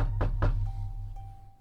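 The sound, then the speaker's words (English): Two firm knocks on a dorm room door in quick succession, followed by a low steady hum and a faint lingering tone. “He knocks.”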